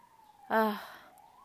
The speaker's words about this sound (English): Wow, can you hear the siren?